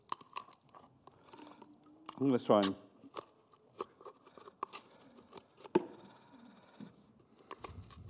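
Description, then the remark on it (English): Scissors snip and click in a loose, irregular series of sharp, crisp cuts spread across several seconds, with a man's voice briefly speaking partway through. “Got my scissors there.”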